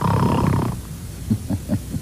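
A loud, raspy snore drags on for a moment, then breaks into a few short, softer snorting puffs in a quick uneven rhythm. No one speaks.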